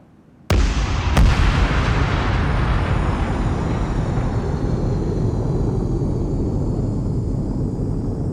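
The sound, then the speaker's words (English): A Lockerbie-style test bomb, placed by the U.S. government in the 1990s, detonates inside a large wide-body jet airliner with a sudden sharp blast, quickly followed by a second crack, then a loud, sustained roaring rumble that slowly fades. No voices are heard. “So in the 1990s, they put a Lockerbie-style bomb on board this wide-body jet, then watched what happened.”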